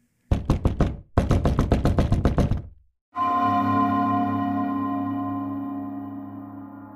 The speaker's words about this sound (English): After my friend left my home, there was a knock at the door no more than 30 seconds later.